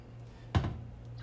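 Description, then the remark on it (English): A single sharp clack of a computer keyboard key, fairly quiet, rising briefly over a steady low electrical hum with no voices. “Oh, the keyboard?”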